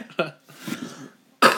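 A person coughs: a short cough, then a mumbled voiced sound, then a sudden loud, harsh cough at the very end.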